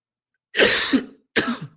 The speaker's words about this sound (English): I've had like a nagging cough for a week. That's really annoying.